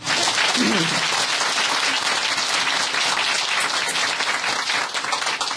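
A crowd applauds a storyteller steadily, many hands clapping in a dense, continuous patter that stays loud for several seconds, with a brief voice murmuring early on beneath it.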